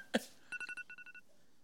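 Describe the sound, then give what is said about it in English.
A phone alarm going off: a quick run of about nine short, bright electronic beeps in a steady rhythm, just after a single sharp knock, with no voices. “Oh, that was your alarm.”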